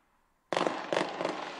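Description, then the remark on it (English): After a brief moment of near silence, a loud fireworks blast erupts, followed by dense, sustained crackling with a couple more sharp bursts layered in, bright, with no voices. “Fireworks, boom goes the dynamite.”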